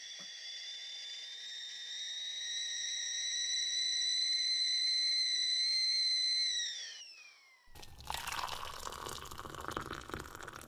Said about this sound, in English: So I'll put the kettle on, that might make a bit of noise.